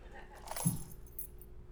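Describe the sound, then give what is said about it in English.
A short jingle of keys being shaken, bright metallic clinks bunched around one quick burst and then trailing off over a faint low hum. “On a scale of 1 to 10, how many of you were a 10 in confidence that these were keys?”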